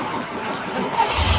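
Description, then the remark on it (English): A truck engine cranks over and catches, its rough mechanical noise building into a low, steady rumble that swells louder toward the end of the short burst. “The truck roared to life.”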